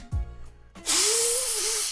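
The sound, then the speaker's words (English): Someone blows their nose into a handkerchief: a short low snort, then a loud, breathy blast lasting about a second with a wavering, honking tone running through it. “Why are you going to blow your nose into it's a cloth?”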